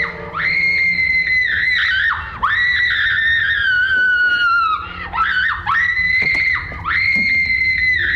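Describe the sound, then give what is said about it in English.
A woman lets out long, sustained screams in several drawn-out bursts, her voice shrill and loud, rising and falling in pitch with brief breaths between them, with no other talk; a character screaming in a slasher movie. “… is most definitely a scream queen. She has build up and release.”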